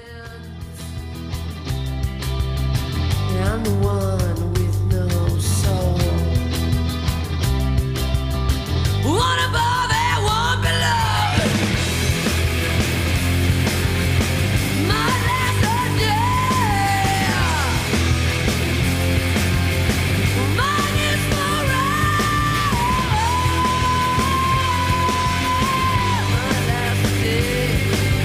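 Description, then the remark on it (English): A loud, fast rock song in which a high female voice wails and screams over driving drums and dense distorted guitars, filling the whole stretch without a break. “And the first four songs of this album just go. Insane. They're quick, and she just is wailing.”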